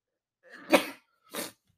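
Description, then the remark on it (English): A loud sneeze with a breathy wind-up bursting into a sharp explosive release, followed moments later by a shorter noisy exhale or sniff. “I need to sneeze again.”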